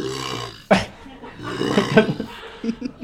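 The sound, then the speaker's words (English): A paleontologist vocally imitates a low, tuba-like dinosaur honk, a pulsing, very low sound with rough, growling pulses, starting with a sharp burst and followed by several throaty, rumbling calls. “It's a honk, but it's like a tuba honk. So it's like a pulse, a very low sound.”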